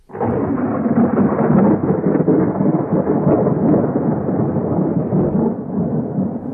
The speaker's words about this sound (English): There was a great storm